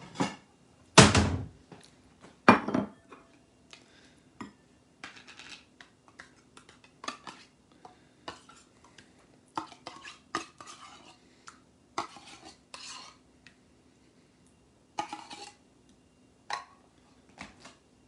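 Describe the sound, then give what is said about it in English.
Dishes clatter as a bowl is pulled out, with a loud clank near the start followed by scattered clinks, taps, and scraping of kitchenware, with no talking. “And let's get a bowl.”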